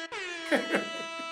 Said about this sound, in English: Insert air horns.